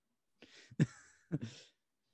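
A short coughing fit: a few harsh, raspy coughs in quick succession, the last two sharp and forceful, then silence. No speech.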